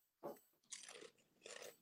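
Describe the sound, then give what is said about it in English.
Three sharp crunches of a crisp snack from a bag being bitten and chewed, spaced unevenly with brief pauses between them, no talking. “Oh, you hear that crunch?”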